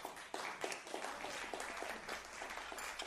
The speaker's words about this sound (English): Let's applaud ourselves.